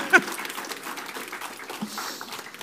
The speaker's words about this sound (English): All right. You can clap. There was like the one awkward clap.